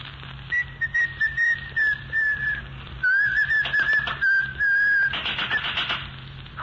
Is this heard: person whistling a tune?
yes